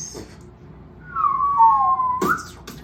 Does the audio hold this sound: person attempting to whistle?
yes